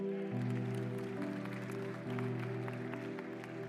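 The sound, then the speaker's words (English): A round of applause from the Southview church audience welcoming a family joining the church, with steady clapping running the whole time beneath loud, sustained musical chords that shift pitch once or twice. “you're excited about that by saying amen, giving them a round of applause.”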